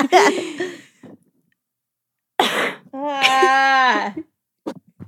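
A forced, put-on cough rasps loudly right into the microphone, followed by another harsh cough burst and a drawn-out vocal groan, then a couple of short throaty clicks. No words are spoken.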